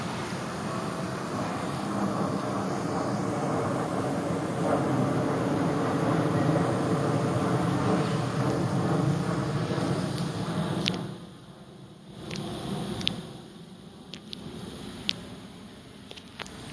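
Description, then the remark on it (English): At 9:37 p.m., outside a dentist's office, a loud, steady droning roar of an airplane passing low, directly overhead, fills the first eleven seconds, then drops off abruptly into near quiet broken by a few sharp clicks. “That's the state flying directly over again in airplane.”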